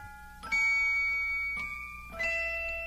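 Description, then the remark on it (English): Bright ringing bells open a festive Christmas song intro, three clear chiming strikes whose tones hang and overlap, fairly loud, with no voices. “And my children and I, we always listen to some Christmas songs, some from my home country and some that I adopted from English language as a Christmas tradition.”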